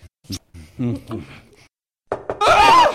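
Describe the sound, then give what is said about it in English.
A voice talks, then after a short pause come two or three sharp knocks on a door, quickly followed by a loud burst of vocal sound. “I thought I'd knock for a change.”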